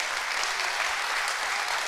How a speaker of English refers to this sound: Come on, clap your hands.